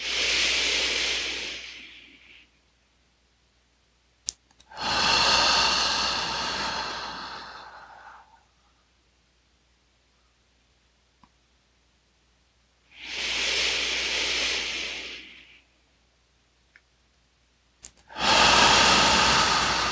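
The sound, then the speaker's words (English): Slow, deep breathing in a guided breathing exercise: long forceful exhales squeezing out all the air, and inhales, four broad rushing breaths spaced by pauses of near silence, with no talking. “Squeezing every last molecule there.”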